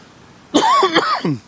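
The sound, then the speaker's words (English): A quick run of three or four harsh, throaty coughs, fairly loud, coming in rapid succession with no talking around them. “Got me so mad, I'm coughing out here.”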